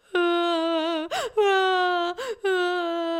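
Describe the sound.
A voice imitates sobbing: three long, wavering, moaning wails, each broken off by a sharp, shuddering gasp for breath, loud and steady in pitch, with no other talking.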